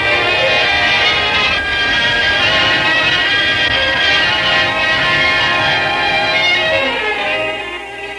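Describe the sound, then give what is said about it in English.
A loud, continuous train sound fills the whole stretch: dense rumbling noise layered with sustained high, whining metallic tones, easing off slightly near the end. No one speaks. “I got off the train, saw my family, and then I got on another train and headed for Judy's hometown.”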